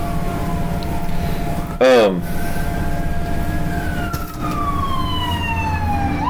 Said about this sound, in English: Another fire truck. That gone.